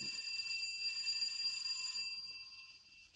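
A doorbell rings at a deserted-looking house on Durant Street with a steady, sustained high metallic tone for about two seconds, then fades away, heard alone at moderate volume without any voices.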